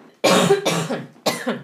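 A person coughs three times, loud, harsh bursts, the first two in quick succession and the third after a short pause, with no talking.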